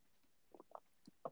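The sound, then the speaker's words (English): A handful of soft, quick slurping sips of tea, irregularly spaced over about a second, quiet with no talking. “Sorry, I'm sipping my tea.”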